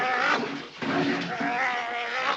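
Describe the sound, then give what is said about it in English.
Actor Bert Lahr imitates a lion's growl, dubbed in later for the Cowardly Lion in The Wizard of Oz: a rough, raspy, continuous snarl with wavering harmonics that swells and dips over a couple of seconds and stays fairly loud throughout. “But Lahr himself dubbed in the growls later on.”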